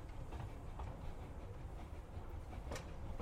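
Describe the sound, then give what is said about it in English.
A train rumbles steadily with a dense low roar and occasional clacks of rail joints, fairly loud as it glides in and rolls to a halt at Maple Street, with no voices. “And the train stops just for you.”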